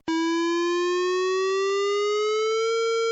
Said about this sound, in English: That is the sound you never want to hear. It is the sound of a warning siren going off at a nuclear power plant.